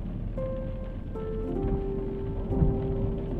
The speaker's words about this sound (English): I like the sound of the rain.